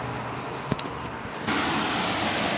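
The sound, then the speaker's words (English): Water rushes out of the Arlington Reservoir, a secondary water source, in a steady, hissing roar, growing noticeably louder and fuller about halfway through, with a brief knock near the start. “Hear that sound? That's the sound of the water going out of the Arlington Reservoir.”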